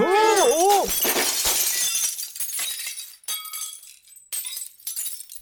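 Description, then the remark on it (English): Rare crystal figurines on a tray smash in a loud, bright crash, followed by several seconds of scattered high tinkling as shards settle and fade. A short wavering vocal cry sounds at the very start. “I picked up those rare crystal figurines you ordered. They're on this tray.”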